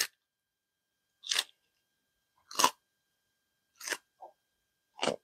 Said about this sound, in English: Yeah, I think he's very happy with me chewing.